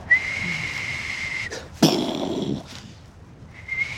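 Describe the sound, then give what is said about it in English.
A person whistles a long, steady high note, trying to imitate a falling bomb, then breaks off into a sudden noisy burst before the whistle briefly returns near the end. “I can never get that whistle into the bomb thing.”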